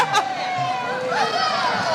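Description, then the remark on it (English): A steady wash of crowd chatter, many overlapping voices talking and calling out at once with no single speaker standing out, holding a fairly even level for two seconds, as t-shirts are thrown into the crowd. “I have always wanted to throw a t-shirt into a crowd.”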